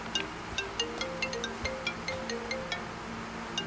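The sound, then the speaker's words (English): A faint phone ringtone plays a quick, steady run of bright electronic beeps over a low background hum, with no one talking. “Now some phone is ringing.”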